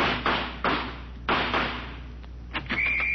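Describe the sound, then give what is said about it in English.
A door is flung open with a loud bang, followed by a rapid string of heavy, echoing thuds and knocks, ending with a faint high whine. “I'm going to fling this door up, and when I do, I'm going out shooting.”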